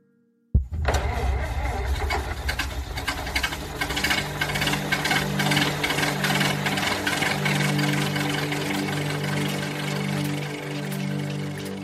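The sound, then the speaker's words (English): An early automobile's internal combustion engine sputters to life abruptly and keeps running with a loud, steady, rattling chug for several seconds with no talking. “At almost the same time, the first automobile with an internal combustion engine was invented.”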